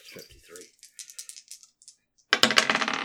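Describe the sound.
Dice rolling: a scattering of light, quick clicks, then a loud, sustained clatter as they tumble across a hard surface. A brief murmur of voice is heard at the very start.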